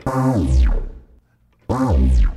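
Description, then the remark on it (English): A synthesized effect made in Massive sounds twice, each a loud harmonic-rich tone sweeping downward with a bright swooping overtone, trailing into a reverberant tail before a brief gap and the repeat. “That could be interesting without the reverb on it.”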